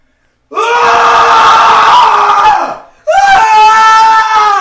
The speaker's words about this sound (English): So, now, the scream of the day